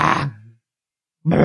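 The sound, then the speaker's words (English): A voice imitates a mountain lion's growl: two rough, throaty snarls, the first trailing off into a low rumble, then a pause before a second loud growl starts up. “It's less a mountain lion and more an angry Muppet, I guess.”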